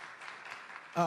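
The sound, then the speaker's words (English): A crowd claps for the speaker's senior pastors, Pastor Matthew Keith Thompson and Pastor Mona Thompson, in a steady, even wash of applause for about a second, then a voice starts speaking as the clapping fades. “You don't know them, but can you clap for my pastors anyway? Just clap for them.”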